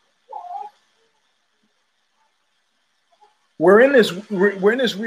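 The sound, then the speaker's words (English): A cat meows loudly in a run of drawn-out, wavering yowls, after a brief faint mew and a few seconds of near silence. “We're in this kind of Descartesian kind of space, and the cat too.”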